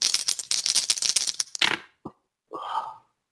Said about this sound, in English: So you're going to roll 7 dice and you're going to subtract 1 success from whatever you roll. So go ahead and make the roll.